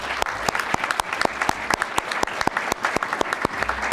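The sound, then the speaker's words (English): An audience applauds Senator Bob Menendez after his speech, with dense, steady clapping that carries on throughout, moderately loud, with no voices standing out. “Please give him another round of applause.”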